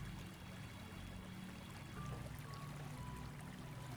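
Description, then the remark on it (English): Steady rushing water pours continuously like a small waterfall, a soft, even wash of noise with a low rumble underneath and no pauses, fairly quiet and with no voices. “Now that you know that this water, it doesn't have the force to hurt, slowly take your seat under this waterfall.”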